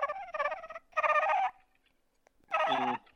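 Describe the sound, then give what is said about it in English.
A person imitates a turkey's purr, practising for a turkey calling contest: three rolling, fluttery bursts of mid-pitched warbling, the first choppy and the last ending in a lower buzzy trill, with short silent gaps between them. “I signed you up for a turkey calling contest. So I've been perfecting my purr, and it's gonna be dynamite.”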